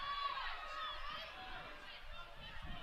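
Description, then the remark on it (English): A steady, dense roar from a full-house stadium crowd at Southfield during a soccer match between South Carolina and the Cougars, sustained, with a blur of indistinct voices and occasional brief high whistle-like tones. “Full house here at Southfield. You'll hear the crowd throughout.”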